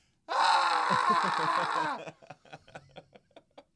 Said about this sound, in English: That was Andy getting struck by a lightning bolt.